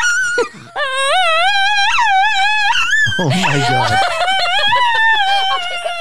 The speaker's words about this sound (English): It's not every day you get the singing dog, Alfie, in studio.